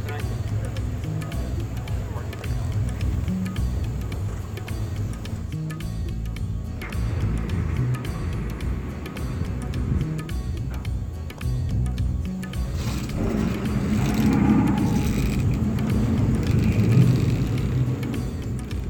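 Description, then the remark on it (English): A steady low engine rumble drones throughout from a tugboat on the side of a barge-like ferry, the oldest ferry in the country, carrying about 3 cars and bikes across, growing slightly louder near the end, with faint murmuring voices in the background. “The oldest ferry in the country is kind of like a barge that has a tugboat on the side of it.”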